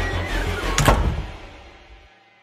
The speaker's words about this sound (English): She reaches back and grabs her Zobo cup and shuts the door behind her quickly.